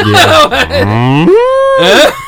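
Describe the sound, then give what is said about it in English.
A person does a drawn-out mooing imitation, one loud, close moo that starts low, rises into a sustained tone, and wavers at the end. “I have a milk cow, Daisy.”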